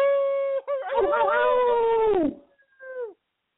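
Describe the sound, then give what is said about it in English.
A man's voice gives a "HyperSloth howl", imitating a long animal howl, a steady wavering tone that swells, slides downward, and ends with a short, fainter trailing howl. “Well, until Friday's show, I'm going to give it a HyperSloth howl. 1, 2, 3.”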